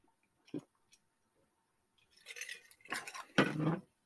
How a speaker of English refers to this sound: Next, we got Prunella and Cursed Skull Ring graphic novel by First Second, after I take a drink of water.